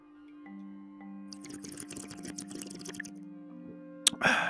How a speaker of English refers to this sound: You know, I'm sitting here in my studio, my coffee here. Speaking of coffee, let's take a moment to take a sip on that goodness.